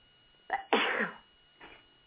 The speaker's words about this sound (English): Excuse me, I'm going to have to sneeze here.